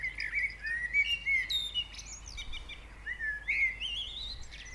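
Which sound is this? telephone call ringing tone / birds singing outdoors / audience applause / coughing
birds singing outdoors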